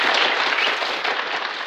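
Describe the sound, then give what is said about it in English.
A prerecorded applause sound effect (an applause drop): a burst of crowd applause, dense and steady with many overlapping claps forming a bright, crackling wash at fairly loud, even volume throughout, with no voices. “First up, do we have an applause drop or anything like that?”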